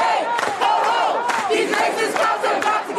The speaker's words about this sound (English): The protesters took to the streets Saturday in St. Paul outside of the state fair, yelling, quote, pigs in a blanket, fry them like bacon, end quote.